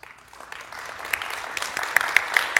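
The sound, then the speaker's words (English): An audience at an AWS re:Invent conference talk applauds, starting light and swelling into steady, dense clapping with a few sharp, bright claps standing out near the end. “So, by round of applause, good reinvent so far?”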